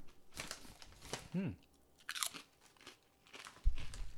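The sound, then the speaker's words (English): Loud crunching of crisp sour cream and ranch flavored snack chips bitten right into the microphone, a series of sharp brittle bites and chews, with a brief vocal sound partway through and a heavier thump near the end. “Am I going to crunch this into the microphone or do you think I should do it away?”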